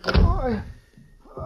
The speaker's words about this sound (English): Shut up! Close that door.